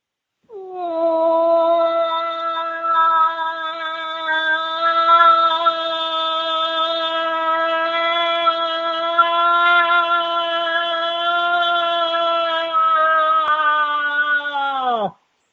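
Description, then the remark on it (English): An imitated cow call: one long, steady, nasal tone held for about fourteen seconds, rising briefly at the start and dropping off in pitch at the end, loud and alone with no talking. “That's a long cow call.”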